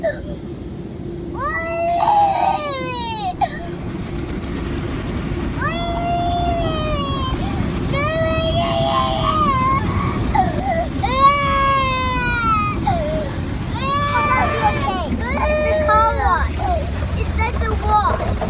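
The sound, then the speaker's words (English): A toddler girl cries and wails in repeated rising and falling bursts, loud, over the constant rushing, whooshing roar of a drive-through car wash. “She's got tears in her eyes.”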